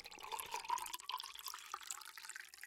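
Water pours steadily into a container, a continuous splashing trickle that rises slightly in pitch as it fills, with no voices.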